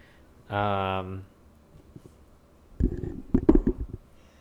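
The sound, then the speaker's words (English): A person sneezes: a drawn-out voiced buildup, a short pause, then a cluster of sharp, breathy bursts. No one talks during it. “Bless you. Excuse me.”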